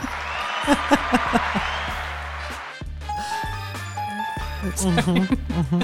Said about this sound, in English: Where's the clapping for that?